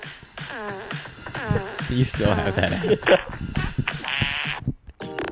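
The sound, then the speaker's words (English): Several buzzy, sputtering fart sound effects play in quick succession from a soundboard app on a phone, fairly loud, mixed in with people talking over them. “It's just a calm fart song.”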